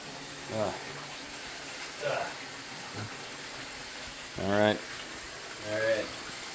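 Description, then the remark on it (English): Hot water pours in a steady hiss that runs the whole time, while several short murmured vocal sounds rise briefly over it. “Excuse for some more hot water.”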